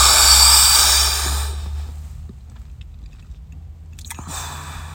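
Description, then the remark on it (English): A loud, airy deep static breath drawn in using the entire chest, followed by a few seconds of near silence and then the start of a slow breathy exhale. No one speaks. “You kick your own ass by taking a deep breath in with me. Do it now.”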